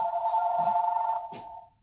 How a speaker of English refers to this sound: Oh, it won't stop it. Yeah, okay. Oh, stop. This is that other phone.